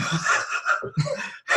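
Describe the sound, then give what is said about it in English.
Heavy, ragged breathing into the microphone, several loud breathy gusts in quick succession with a brief pause before a final exhale. “It's just me breathing heavy.”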